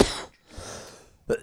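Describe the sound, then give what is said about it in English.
A harsh cough bursts out, followed by a long, raspy wheezing breath and then a second sharp cough, moderately loud with no talking. “This is why he thought I was fat. It's because of my cough.”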